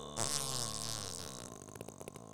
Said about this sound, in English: You know, it's not Brothers Grimprov unless there's a good fart sound.